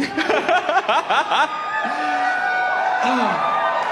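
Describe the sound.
A crowd gives a modest cheer: a few quick bursts of laughter-like voices, then a steady murmur of scattered whoops and calls at moderate volume.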